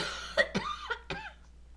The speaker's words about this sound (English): I have to cough again. She has to cough.